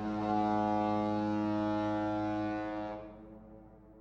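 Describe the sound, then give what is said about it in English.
A deep ship's horn blasts in one long, steady, loud tone for about three seconds, then cuts off, leaving a fading low rumble behind it. “And now, he was on the boat to England.”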